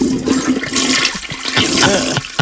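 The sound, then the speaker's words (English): A toilet flushes, a loud continuous rush of swirling water that churns steadily for a couple of seconds with no voices. “Wipe. Flush.”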